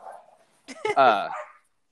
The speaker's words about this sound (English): There's a dog.